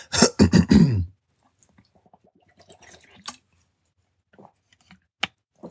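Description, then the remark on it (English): A few quick, loud gulps of water in the first second, followed by near silence broken by faint wet mouth sounds and two sharp little clicks. “Excuse me. Let me drink this water.”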